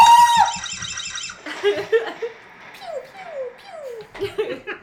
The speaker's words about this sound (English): The darkness at the top of the stairs seemed to move, take shape, and I heard her screaming. I saw myself screaming, but it wasn't my voice. It was the girl I stood next to.